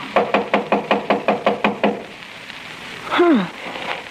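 A quick, steady run of about ten sharp knocks on a door, fairly loud, then a pause and a brief falling vocal sound.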